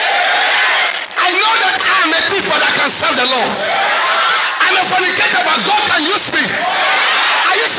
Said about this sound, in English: Lift up your voice and shout! Thank God for the blood of Jesus. Clap your hands for the blood of Jesus.